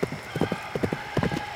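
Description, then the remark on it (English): Horse hooves clip-clop in a steady rhythm of paired hoofbeats, moderately loud, with a faint high whinny-like tone drawn out behind them, as a horse approaches from the south across a river, visible on the horizon. “On the horizon, a horse became visible.”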